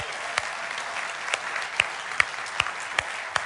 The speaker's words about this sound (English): All of our sixth grade and under, raise your hand. All right, everybody else, let's give them a round of applause.